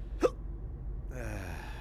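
A single sharp hiccup pops out near the start, close and fairly loud, followed by quiet and then a soft breathy murmur of a voice.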